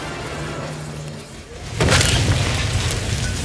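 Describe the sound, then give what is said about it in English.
A heavy metal ball, the red planet Mars from a giant mobile, falls from the ceiling and slams to the ground partway through, a single loud booming crash that follows a quieter rumbling stretch and leaves a sustained, noisy rumble ringing on afterward. “The metal ball squashed the gold-toothed weasel as it slammed to the ground.”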